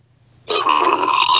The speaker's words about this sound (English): All right, guys. Podcast with a burp.